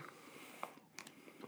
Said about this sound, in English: Ooh, this one is... What's going on with this one? A lot tougher to chew. Smells pretty smoky.